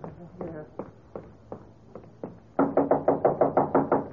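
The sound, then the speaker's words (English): Knocking on an office door at a museum in Chicago, first a steady series of moderate knocks, then a sudden louder burst of rapid, insistent pounding. A low murmur of voices may sit faintly underneath. “Open the door.”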